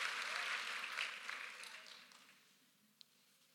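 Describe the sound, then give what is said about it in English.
A crowd of people applauding together, a dense patter of clapping that gradually thins and fades out after a couple of seconds, leaving quiet with one faint click. “Clap for every parent who agrees with me.”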